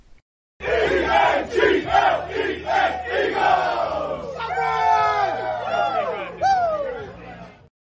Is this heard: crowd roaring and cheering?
yes